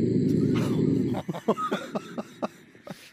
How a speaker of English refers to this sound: The text that went under that video, she said, welcome to the team, because this was me. Last night, she's filmed me snoring. Have a listen.